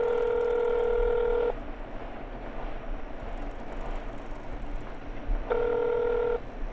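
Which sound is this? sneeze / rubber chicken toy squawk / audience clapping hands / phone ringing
phone ringing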